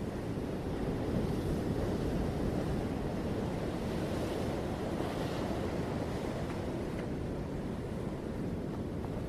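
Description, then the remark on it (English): Steady ocean surf of calm waves washes continuously over the sand, a broad rushing hiss with gentle swells and a soft breeze, no voices present. “The rhythm of the calm waves flow over the sand and it relaxes you.”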